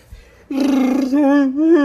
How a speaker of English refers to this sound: how about we hear that Wookiee roar?